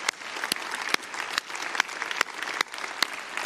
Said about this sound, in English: Let's give these round. Just keep on clapping.